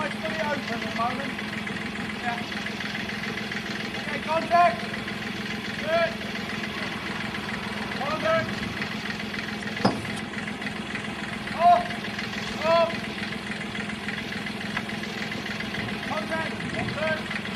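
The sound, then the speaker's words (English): A propeller aircraft engine starts up and idles through its initial warm-up with a steady, rumbling drone that holds an even pitch and loudness, with faint, brief sounds occasionally rising above it. “It'll also give you some idea of the time that it takes from startup to getting airborne”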